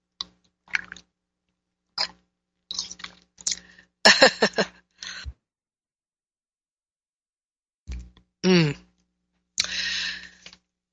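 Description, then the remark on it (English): Intermittent mouth sounds of someone sipping tea from a cup: short wet slurps and swallows in small clusters, separated by a few seconds of near silence, with no talking. “Okay, I must sip my tea.”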